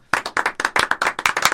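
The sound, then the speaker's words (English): A small group claps briefly, with quick, uneven hand claps overlapping into a short burst of applause that stays fairly loud for just over a second. “So, you know, give yourselves a round of applause.”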